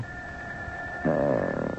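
A telephone ringing as a steady, high electronic tone that holds for the whole moment, joined halfway through by a louder, wavering harmonic cry layered over it.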